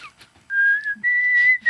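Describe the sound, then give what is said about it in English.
A short whistled melody of four long, clear, sustained notes, the later ones slightly higher, whistled alone with no talking. “the first thing that went to my mind is that tune from Katniss”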